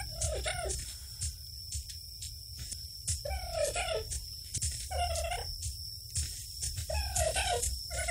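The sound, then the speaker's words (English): Sound artists' imagined rendering of a dodo call: a series of repeated hoarse, gobbling bird cries, loud, over a constant high insect-like drone, with no talking. “Now, over the centuries, some people have guessed what the dodo sounded like, and this is sound artists' rendering of what they think it sounded like.”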